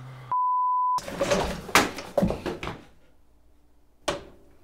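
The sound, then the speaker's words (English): A short steady beep, then a loud clattering crash as a computer display is knocked over onto a desk, scratching it, with several sharp knocks, a faint rattle and one final thud. “Oh, I just knocked over my display.”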